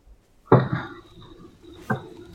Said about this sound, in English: That's his tail. I can hear the tail.